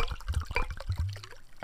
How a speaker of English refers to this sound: Go ahead and pour that shit up, man.